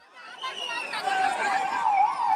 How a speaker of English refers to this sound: Ambulance sirens and screams filled the air in the town of Morbi Sunday evening after the cables of the suspension bridge snapped, sending the middle span of the bridge tumbling into the Machu River.